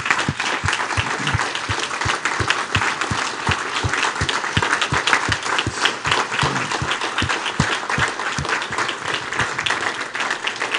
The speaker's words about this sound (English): So I'm going to ask everyone to stand to your feet and applaud each of these people that I have recognized right now.